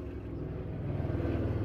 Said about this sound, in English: Pause for helicopter.